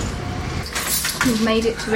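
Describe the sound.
A bunch of keys jangles in short, bright metallic bursts, then a voice starts talking over the faint rattle.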